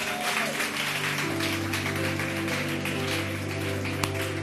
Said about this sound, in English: Clap your hands and bless the name of the Lord.